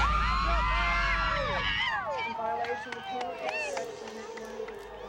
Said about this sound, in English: And the crowd absolutely went crazy. You could even hear it on the second floor in the courtroom. Cheers, congratulating, it's like your team just won the Super Bowl.